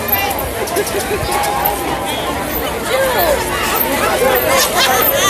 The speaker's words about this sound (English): I'm trying to get myself into the march lineup. I mean, the crowd is unbelievable out here.